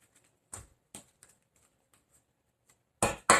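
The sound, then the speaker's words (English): Tarot cards being shuffled for a reading on the energy for Virgo in January 2021: a few quick papery slaps and flutters separated by quiet pauses, ending in two louder, fuller bursts of riffling. No one speaks. “And I'm going to do a shuffle again and do that.”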